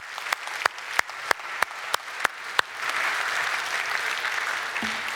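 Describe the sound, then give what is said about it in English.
A church audience claps in a steady unison rhythm, about nine sharp beats, then breaks into a sustained wash of loose, overlapping applause celebrating an award. No one speaks. “Let's just give her, but us, a little clap there, you know?”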